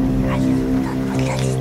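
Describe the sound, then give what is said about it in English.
A car engine idles with a steady, low harmonic rumble that holds throughout, shifting pitch slightly near the end, while muffled voices murmur over it. “Is that a fucking gremlin in the background?”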